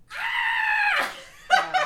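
A person lets out a loud, drawn-out scream lasting nearly a second, then, after a brief pause, gives a second shorter, broken shriek.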